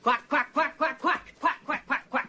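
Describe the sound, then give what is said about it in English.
A voice imitates a duck, giving nine quick nasal quacks in a steady, even rhythm, moderately loud, with brief gaps between each call. “Quack, quack, quack, quack, Gordon, quack”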